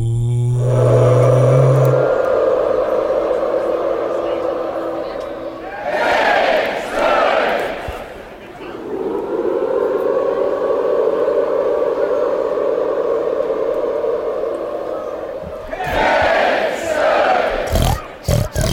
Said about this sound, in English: I want to hear a crowd right now, and I want to call them piggies.